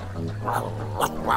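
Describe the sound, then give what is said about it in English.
A dog named Pilot growls low and steady for about a second, a rumbling tone that holds evenly before breaking off into a couple of brief, sharper snarling sounds. “Pilot never growls at anyone.”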